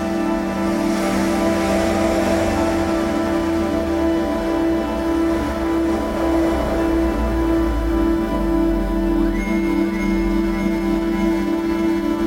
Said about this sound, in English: You put some cars driving by in this one as well.